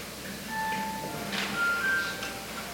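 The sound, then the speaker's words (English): A phone sounds a short electronic melody of thin, sustained beeping tones that step between pitches during a prayer, fairly soft over a low steady background hum, with no one talking. “Sometimes phones make noise too.”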